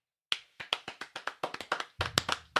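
Hands clap as a closing clap in a quick, slightly uneven run of sharp smacks, about fifteen in all, growing denser and fuller near the end as if more than one person joins in. No one speaks.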